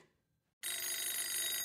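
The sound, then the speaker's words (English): A telephone bell starts ringing abruptly after a brief quiet moment as Clark calls McGuire, a loud, steady, bright metallic trill that continues unbroken to the end. “Clark calls McGuire.”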